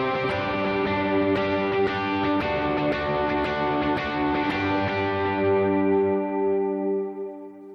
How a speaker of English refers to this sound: And then when you get to a chorus, usually you're going to add, some overdrive so you can drive it a little bit more.